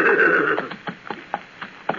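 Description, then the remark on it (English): A horse gives a short neigh, then its hooves clop in an uneven rhythm of sharp hits as it is ridden, winding in and out through a thick stand of black fir, with no voices. “Make your horse wind in and out of that thick settlement of black fir.”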